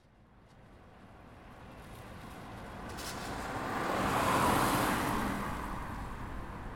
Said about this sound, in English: Is that her car?